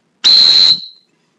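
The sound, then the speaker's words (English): A single loud, piercing dog training whistle blast at a steady high pitch, the louder whistle used for signaling a dog at long distance, held for about half a second before cutting off with a brief ringing decay. No voices. “And then for long distance, the whistle should be even louder, for example.”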